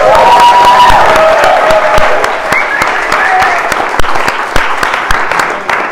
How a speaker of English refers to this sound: All right, good morning. Before we actually start here, can we have a round of applause for the music team?